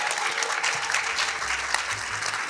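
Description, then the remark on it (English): An audience at an evening event in Boston applauds steadily, a dense, even patter of many hands clapping with no pauses, sustained throughout. “Clap for yourselves.”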